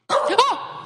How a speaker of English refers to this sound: Oh my God. That scared me. I don't know. Sorry, it's Troy's dog. Lolo.